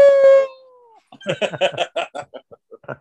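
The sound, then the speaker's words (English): A person lets out one loud, sustained howl like a wolf, the pitch sliding slightly downward before fading after about a second, followed by bursts of talk or laughter. “Oh, when he changes into a wolf and bangs that bitch.”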